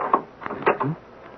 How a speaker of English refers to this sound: I'll open the door very quietly. I don't want to wake him.